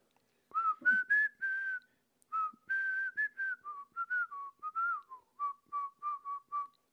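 Someone whistles a bouncy melody up close, clear and fairly loud, moving through sustained and sliding notes before ending in a run of short, evenly spaced repeated notes. No talking.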